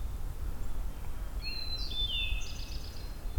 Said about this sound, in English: Yeah, pine warbler trilling.